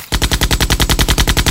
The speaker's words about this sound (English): One of the soldiers turned, and a trail of bullets flung toward Aylin.